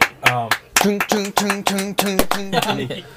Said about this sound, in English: And everybody's excited. Everyone's clapping? Mm-hmm. Yeah, we'll clap along.